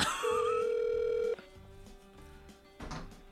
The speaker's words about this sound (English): Rob's not answering the phone.